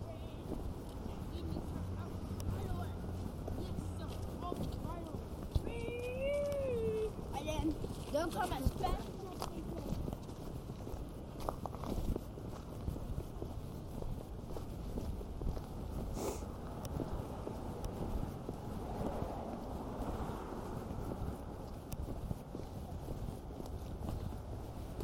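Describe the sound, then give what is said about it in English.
Busy city street ambience on a walking commute through Midtown Manhattan, New York, heading to a bar: steady traffic rumble, footsteps and indistinct passing voices, with a brief warbling whistle-like tone early on and occasional sharp clatters. “What you're listening to now is that same commute, but instead of heading to the studio where I shoot, I'm headed next door to the studio to a bar”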